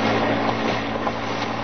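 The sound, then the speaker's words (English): A car engine hums and drones steadily at an even level for a second and a half as a car approaches and turns in at a garage in Battersea, London, a low rumbling motor sound with no voices. “Car coming this way, sir.”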